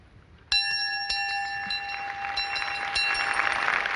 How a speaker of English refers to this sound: The symbol for Dublin is a bell. The pilgrim bell visited every diocese in Ireland carried by the faithful.